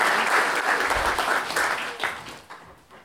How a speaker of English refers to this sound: Let's us give a huge round of applause, please,